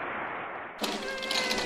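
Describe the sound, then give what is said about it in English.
A cat lets out a single drawn-out meow, bright, rising abruptly out of a steady background hiss and lingering for about a second. “will balance 99 dishes on his nose, standing on the back of a cat, perched atop a large helium balloon, directly above 12 nuns standing dangerously close to the edge of a swimming pool.”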